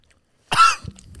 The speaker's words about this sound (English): It's funny when you say it's not that bad and you're trying to hold that cough.